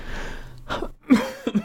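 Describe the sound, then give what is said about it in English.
A few short, throaty coughs in quick succession, each a brief harsh burst of breath with no talking around them. “Oh God, this cough.”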